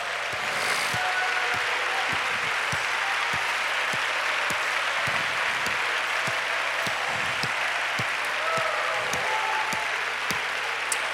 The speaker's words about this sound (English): Hallelujah, give the Lord a hand clap.